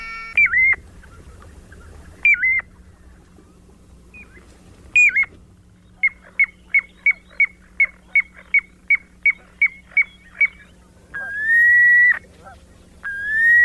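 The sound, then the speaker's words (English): Clear, piping whistles of a piping plover: a few separate downslurred notes, then a steady run of about a dozen short, evenly spaced peeps, ending in longer sustained whistled calls over a low hum. “And here's why he's called the piping plover.”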